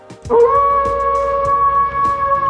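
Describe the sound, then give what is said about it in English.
A wolf howl rises briefly at the start, then holds one long, steady, fairly loud note for about two seconds, alone with only faint background noise. “Welcome to episode 126 of Wolvescast, the show that is ready to howl at tomorrow night's Wolf Moon.”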